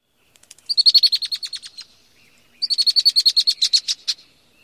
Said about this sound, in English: Let's do that one more time, but this time I'm also going to include the red-winged blackbird and the yellow-headed blackbird, which we discussed in a previous episode. Here we go. Red-winged blackbird.